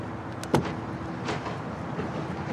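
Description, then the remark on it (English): A car door unlocks with a sharp mechanical clunk, followed a moment later by a softer thump as it opens, over a steady low background rumble. No one speaks. “You'll have to unlock it”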